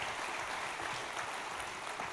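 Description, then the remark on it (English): An audience claps steadily for about two seconds, a dense, even wash of many hands with no individual claps standing out and no voices over it. “Hey, y'all give these guys a big round of applause.”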